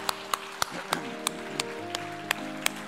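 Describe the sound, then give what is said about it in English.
Hand clapping in unison as a hand clap of praise to the Lord, about nine sharp claps on a steady beat, carried over a low, sustained musical tone with a faint murmur underneath. “Now give the Lord a great hand clap of praise.”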